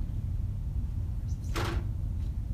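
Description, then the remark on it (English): A pet opens a door by itself, with one short, sharp clack of the latch partway through, over a steady low rumble of room noise. No one speaks. “I can't lie, it was really cool to watch him open the door by himself.”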